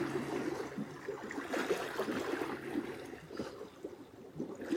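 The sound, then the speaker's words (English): Continuous rushing water washes and whooshes in the morning, a steady churning flow with surging swells and no voices. “Just feeling into the song of the water this morning. The whoosh.”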